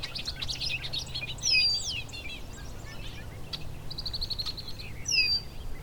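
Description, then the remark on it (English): Bobolink song: bubbly, jangling bursts of high, tinkling notes rising and falling, with brighter phrases near the start and end, over a low outdoor rumble. “Some bobolinks.”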